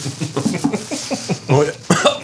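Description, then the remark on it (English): A person coughs, two sharp, sputtering bursts following a stretch of short voiced throat sounds and murmuring, choking briefly on a champagne bubble swallowed while drinking. “Got a bubble down my throat.”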